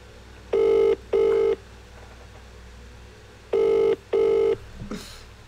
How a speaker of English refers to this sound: Oh, someone's like, Dave's like, my phone's ringing.